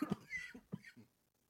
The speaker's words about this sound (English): Excuse me a second, got a cough.